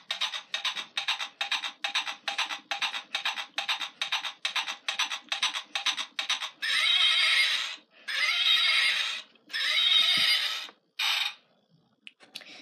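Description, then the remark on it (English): A horse being ridden neighs and whinnies: a rapid, fluttering series of pulses, then several longer, rough, breathy bursts, with no voices alongside. “Right now, I'm riding my horse.”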